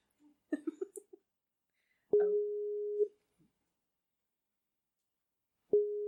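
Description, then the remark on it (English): A few quick soft blips, then a steady mid-pitched telephone ringing tone that holds for about a second, goes silent, and starts again at the end. “Let's call him. Let's press this button and do it.”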